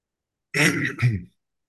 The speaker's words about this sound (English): You coughing. That's louder than I've heard all day.